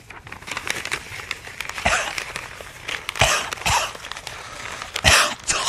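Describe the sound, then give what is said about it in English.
Paper is crinkled in a continuous run of sharp, irregular crackles and snaps, imitating a crackling fire the way it was done in radio. No one speaks. “That sounded a little bit like a fire crackling, didn't it?”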